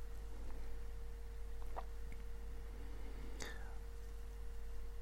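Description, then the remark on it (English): A steady, low electrical buzz from a laptop hums continuously in the background, with a faint higher whine on top and a couple of brief clicks partway through. “You may be able to hear a little bit of a buzzing sound in the background.”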